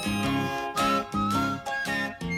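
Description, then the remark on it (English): A whistled melody glides over an upbeat pop backing track, with bright chords pulsing in a steady rhythm. The whistle sits clearly on top of the mix, and no one speaks. “You're whistling along. I certainly was.”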